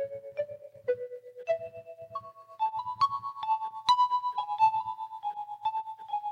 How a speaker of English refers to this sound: and I eased inside to the living room, where my cell phone was ringing. The ringtone unfamiliar to me, but I think you've all heard it before.